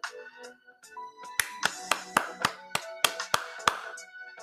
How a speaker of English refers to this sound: And then give yourself a round of applause.